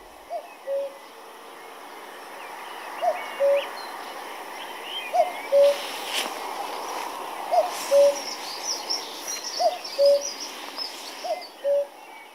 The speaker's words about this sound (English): Although we never hear a cuckoo, for some reason, everybody refers to the cuckoo, as if there's only one. There were more than one last year. We had a good season for them in the Isle of Man, and I'm hoping for another one this year.